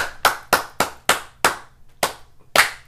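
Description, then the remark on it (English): A single pair of hands claps about eight times at a steady, slightly uneven pace, each clap a sharp bright smack; a brief pause comes before the last and loudest one. No voices. “I ain't gonna be the only one clapping.”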